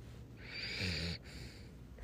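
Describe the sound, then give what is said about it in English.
A single rough, rasping snore from a dog, a low rumbling breath with a hissing edge lasting under a second, then quiet breathing afterward. No one speaks. “Imagine, listen to the dog snoring.”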